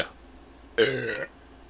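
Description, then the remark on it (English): A single short, throaty burp after drinking grapefruit hard seltzer, fairly loud, lasting about half a second against an otherwise quiet background with no talking. “There's going to be a lot of burping here.”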